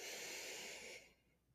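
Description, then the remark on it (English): A single deep, steady inhale through the nose during a guided breathing exercise, airy with a soft hissing rush that holds for about a second before fading out. No talking. “So again, in through the nose.”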